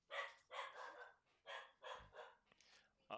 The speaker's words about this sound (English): Anyone want to buy a sausage dog?